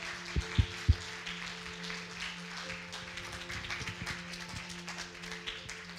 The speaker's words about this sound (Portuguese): Antes de orar, eu queria que você aplaudisse esse Deus maravilhoso. Glória.